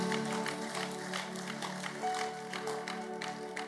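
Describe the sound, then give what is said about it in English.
An audience gives the Lord a clap offering, clapping steadily and enthusiastically for several seconds over a soft, continuous musical tone underneath. “Give the Lord a mighty clap offering.”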